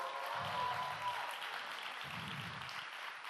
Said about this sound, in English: Get ready, get ready. Just give a round of applause for my amazing wife.